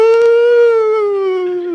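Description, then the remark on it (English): A voice imitates a siren-like cry, called the 'Pentecostal siren', that a woman made while standing and spinning in church: one loud, sustained high 'woo' held for nearly two seconds, its pitch sliding slowly downward, with nothing else alongside. “You probably have never heard anything like this, but we called it the Pentecostal siren, and it was just a noise.”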